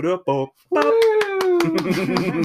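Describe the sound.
A short burst of rhythmic hand clapping, about eight quick, evenly spaced claps, over a sustained voiced cheer that slides slightly downward. Brief vocal sounds come just before the clapping starts.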